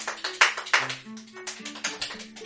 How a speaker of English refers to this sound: Yeah, that's he's pretty... He's not snapping. He's just clapping. That's pretty good.